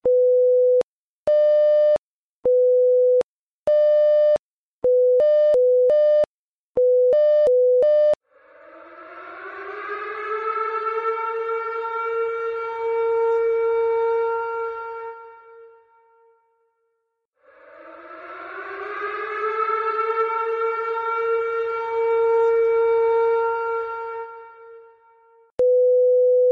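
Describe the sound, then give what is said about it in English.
An AMCON Level 1 alert: a loud electronic alert tone beeps in a rapid stuttering pattern for several seconds, then an air raid siren wails twice, each time rising, holding, and falling away, with no voices. “And that will also be accompanied by the air raid siren audio sound that you normally hear at the beginning of Radio Free Redoubt.”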